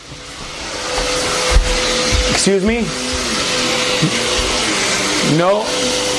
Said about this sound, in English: excuse me, hold on a second, we got the vacuum cleaner going on. I'm going to ask the lady if she can do the vacuuming a little later.